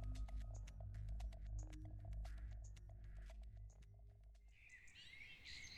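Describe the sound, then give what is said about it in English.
Birds chirp in quick, scattered bursts among the branches of trees in the morning, over a steady low rumble, and a brighter warbling song rises near the end. No one speaks. “Once the sun arose the next morning, birds chirped their glorious song among the branches of the surrounding trees.”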